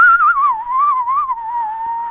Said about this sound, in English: Were you actually trying to whistle there? Yeah. Okay. I'll insert a very clear whistle.